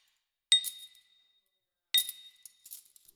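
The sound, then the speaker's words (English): Gold and silver coins clink together as they are counted, in two bright metallic strikes about a second and a half apart, each ringing briefly, followed by a few softer, scattered taps as more pieces are handled. “So he began to count his gold and silver and coins again.”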